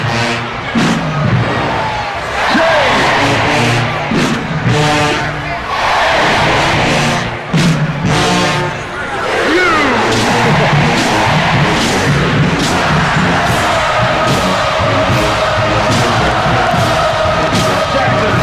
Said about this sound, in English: And at the very end of it, the last thing they did before they exited the field was they did the JSU cheer. You know what time it is.